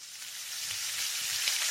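A steady sizzle of fajitas crackling on a hot skillet, a continuous bright hiss with fine popping that holds for about two seconds with no talking.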